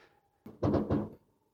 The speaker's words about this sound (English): I have fireworks going on. Can you hear that? Yeah, I heard them. So much for recording. Yeah. Well, I guess that's one way to end it. Yeah, usually it's the cat, but today it's fireworks to end the episode.